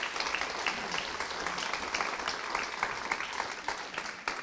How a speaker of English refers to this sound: Should we give them a clap? Yeah. First time.